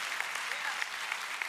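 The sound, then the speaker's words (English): A crowd applauds steadily, many hands clapping in a dense, continuous patter with a few sharper claps standing out, holding an even level throughout. “Come on, if we're gonna clap, let's do it well.”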